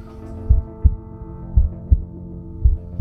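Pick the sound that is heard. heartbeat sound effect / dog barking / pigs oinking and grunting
heartbeat sound effect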